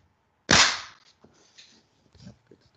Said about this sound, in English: I'm sorry. Did I ruin the clap? No. Do I need to do it again?